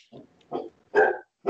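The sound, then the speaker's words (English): A big dog barks several times in quick succession, deep, gruff woofs at an uneven pace, clear, with no one talking. “I do have a couple of dogs, big dogs that in the background.”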